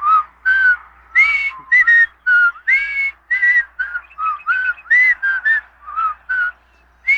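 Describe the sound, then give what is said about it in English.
Two people whistle the bouncy theme song of The Andy Griffith Show together, fairly loud, in short melodic phrases separated by brief pauses, with no talking. “Oh, well, let's whistle the Andy Griffith theme song, huh?”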